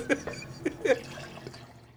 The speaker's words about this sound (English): I was going to say, you can pour the tea out into this cup. Let me try that.